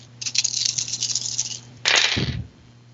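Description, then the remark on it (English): Dice clatter and rattle across a hard tabletop for over a second, followed by a sharper, louder tumble that settles quickly, with a faint steady hum underneath and no voices. “just rolling like crazy. All the exploding sixes.”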